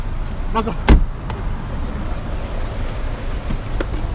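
Inside a car as people get back in, a single solid door thump lands near the start, followed by a few faint clicks over a steady low rumble of vehicle and road noise.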